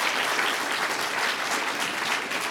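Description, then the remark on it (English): A church audience claps steadily for the men and women serving on the worship team, a dense wash of many hands with no pauses and an even loudness throughout the couple of seconds. “Can we give a round of applause to all those brothers and sisters?”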